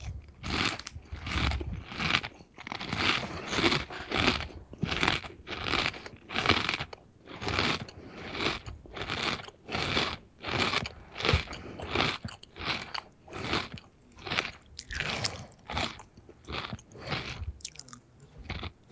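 Loud, steady crunching of potato chips being chewed, a rapid series of crisp bites and grinding mastication repeating rhythmically for the whole stretch with no talking.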